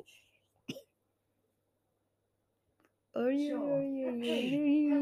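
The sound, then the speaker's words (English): A single short, sharp cough, said to come from a Google Assistant device, bursts out early, followed by a long quiet pause before a voice begins speaking steadily and loudly. “Oh my god, it's coughing.”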